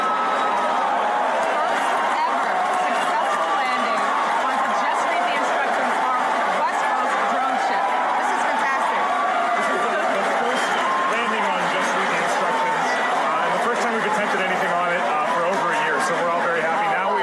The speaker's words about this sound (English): You also heard the cheering. We actually saw the first stage come all the way back to the drone ship.